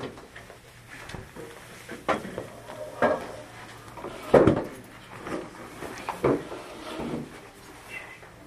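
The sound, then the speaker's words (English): A chair is pulled and set into place, giving several short wooden knocks and scrapes over a few seconds, with faint murmuring in the background. “So, we have to pull a chair, I think.”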